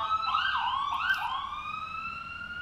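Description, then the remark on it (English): A police car siren wails through a street in New York City as the car comes closer, its pitch sweeping up and down in a steady yelp pattern, continuous with no talking over it. “See, there's a cop coming now.”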